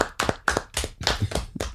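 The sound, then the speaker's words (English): A short burst of steady hand clapping, about seven sharp claps in an even rhythm, fairly loud, with no talking, given as a round of applause for the author Robert Drew. “Round of applause for Robert Drew every day.”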